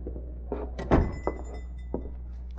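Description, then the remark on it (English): The door of a tobacco shop on Harbor Street opens and closes as Britt Reed enters, with several short knocks and thuds from the handle and frame over a low steady hum. Nobody speaks. “He opened the shop door and nonchalantly entered.”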